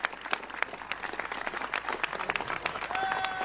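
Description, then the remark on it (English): A crowd of supporters applauding the U.S. president after the bill to repeal Obamacare got through a first big hurdle: dense overlapping claps forming a steady, moderately loud wash of sound with no voices standing out, lasting a few seconds. “As it was clear that the bill to repeal Obamacare had got through a first big hurdle, the U.S. president was greeted by applause by supporters.”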